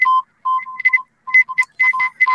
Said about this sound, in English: So, this is Morse code. Bunch of beeps, bunch of dits and dahs. We're sitting right now on 7.035, which is 40 meter band. And sounds like there's a couple operators going back and forth here.